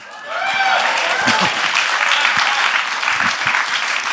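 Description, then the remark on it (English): An audience breaks into sustained applause, a dense, steady wash of clapping that swells quickly and holds strong for about four seconds, with faint voices and whoops mixed in. “Yes, it's worth some applause.”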